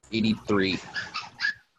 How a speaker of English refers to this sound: What the hell is going on in the background? It's puppies. My grandma has puppies in the room next to me. She was doing something in there. Puppies!